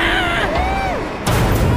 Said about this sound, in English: were those explosions I heard? Damn it, I think so.